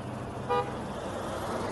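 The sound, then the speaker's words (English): A single short car horn toot, quick and fairly loud, honking at a man driving erratically, cutting briefly through a steady low rumble of road traffic, with no voices. “That car honking at him.”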